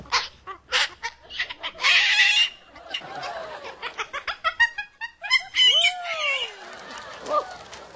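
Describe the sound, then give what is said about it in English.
A female pet bird sings with a busy mix of sharp chirps, whistled rising and falling notes, and throaty clucking sounds, coming in rapid bursts one after another. “Singing and all. Yeah, what a great bird you are.”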